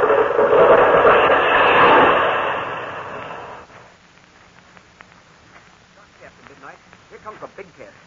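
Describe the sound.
A tree being blown over by the wind comes down with its roots crackling, a loud, sustained rush of crackling and splintering for a few seconds, then fades away as people begin talking.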